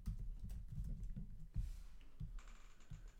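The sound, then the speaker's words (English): Rapid, uneven keystrokes clatter on a computer keyboard as someone types a question about the longest time one can be president, fairly quiet, with a few heavier key thumps spaced out toward the end and no voices. “I'm having trouble typing. I typed lonest.”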